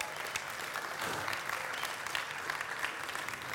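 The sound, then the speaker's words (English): An audience applauds steadily at a morning service on a rainy day, a dense wash of many hands clapping at an even loudness for several seconds, with no single claps standing out and no voices over it. “I applaud you. We applaud you.”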